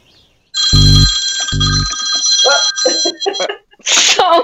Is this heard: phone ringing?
yes